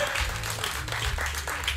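An audience applauds, a dense, steady wash of many hands clapping at once, holding an even, fairly loud level throughout with no voices standing out.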